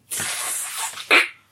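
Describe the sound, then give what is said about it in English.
A voice mimics an aerosol spray: a steady, breathy hiss lasting about a second, ending in a brief, sharper burst. Fairly loud, with no other sounds. “Or maybe the S in … is actually the sound of an aerosol express.”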